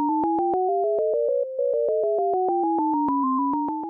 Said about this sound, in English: Each ear is getting an alternation between high beeps and low beeps. But together you're hearing all of the high beeps as a unit on one side, probably on the right, and all the low beeps on the other side.